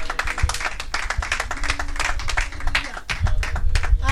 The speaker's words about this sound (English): A lot of applause unto Jesus.